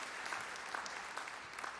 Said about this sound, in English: And we're looking forward to, well, yes, we can clap for what God has been doing at Calvary Church.